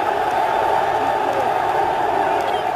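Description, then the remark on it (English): A large crowd of supporters in Kinshasa, Democratic Republic of Congo, roars in steady, dense celebration as Jean-Pierre Bemba emerges from his vehicle on his arrival, a continuous wash of cheering voices with occasional higher whoops rising above the din, loud and unbroken throughout. “The crowd here breaks out into celebration the moment they see Jean-Pierre Bemba emerge from his vehicle.”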